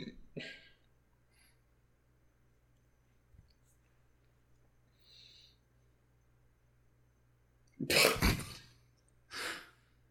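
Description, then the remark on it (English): A loud sneeze from voice actress Jamie Marchi bursts out near the end of a quiet stretch, followed a moment later by a shorter breathy exhale over a faint steady hum. “God bless you, Jamie Marchi.”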